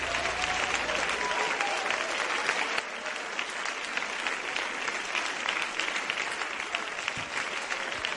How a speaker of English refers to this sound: Come on, stand to your feet right now and clap your hands to the Lord.